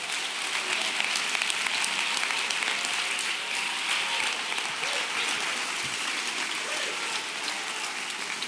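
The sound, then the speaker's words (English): A crowd applauds steadily to thank God during a sermon, many hands clapping at once in a dense, continuous patter that holds at an even, fairly loud level throughout with no break. “I wish somebody would clap their hands and thank God for the greatest treasure.”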